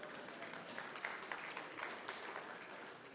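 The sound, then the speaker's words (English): A crowd applauds, a steady wash of many hands clapping for the full few seconds, fairly soft, with no one speaking over it. “yeah, hold your applause, because I gotta tell you something.”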